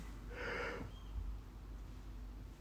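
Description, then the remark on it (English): A single breathy yawn, a short airy rush of breath that swells and fades within about half a second, followed by quiet background noise with no talking. “There we go again, I've just yawned again.”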